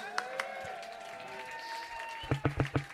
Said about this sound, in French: Je remercie aussi l'ingé son Mitch. Vous pouvez l'applaudir.